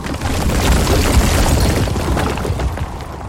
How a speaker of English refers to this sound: But the tower, crumbling at BeeBop's feet, split in two.